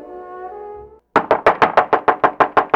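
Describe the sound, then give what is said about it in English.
A brief sustained musical tone fades out. After a short pause comes a rapid series of about a dozen loud knocks on a door in a steady, fast rhythm. “It looked like there was no hope for excitement during this year's holiday season when suddenly a knock was heard coming from the door.”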